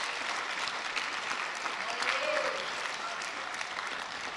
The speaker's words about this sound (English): Stand on your feet and let's give the Lord a clap offering and praise him and bless him.